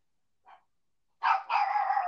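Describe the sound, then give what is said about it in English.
A pet dog named Lucy gives a brief, quiet yip, then after a pause lets out two longer, louder barks in quick succession, heard clearly with no talking. “It's just like the soft bark in the background.”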